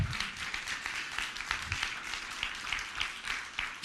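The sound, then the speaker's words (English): A church audience gives the Lord a round of applause, many hands clapping at once in steady, dense applause, a continuous wash of sound that holds at an even level throughout, with a faint voice or two underneath. “Yeah, you can give the Lord a good round of applause.”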